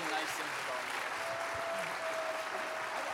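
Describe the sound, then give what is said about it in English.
A church crowd applauds steadily for a man who has just retired after 45 years of ministry, dense continuous clapping filling the whole stretch at an even, fairly loud level, with cheering voices mixed into the wash of sound. “Let them cheer you on.”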